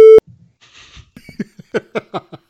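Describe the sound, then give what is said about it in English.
A short, loud electronic censor beep, a single steady tone lasting a fraction of a second, cuts in at the start before someone begins talking. “Do we have to censor that? I'll probably throw a beep in there.”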